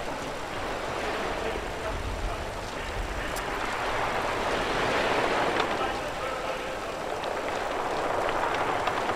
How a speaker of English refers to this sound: Hear that? Rain. I don't remember a forecast for rain tonight. Must be a fluke.